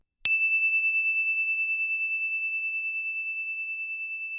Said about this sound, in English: Here comes the story bell.